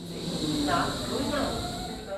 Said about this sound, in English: After a few minutes of waiting, the train arrives, I step aboard, and find a seat in the back corner so I can test out my recording equipment.